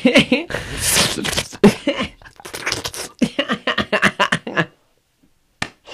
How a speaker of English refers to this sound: What the fuck is all that slurping noise? What the fuck are you eating?